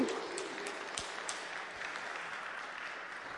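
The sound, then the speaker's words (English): A crowd applauds steadily, a dense wash of many hands clapping at an even volume throughout, with a few sharper individual claps standing out. “I appreciate you clapping.”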